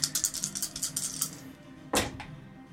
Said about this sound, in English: That was a lot. Why'd you have to use the heavy dice? They feel better.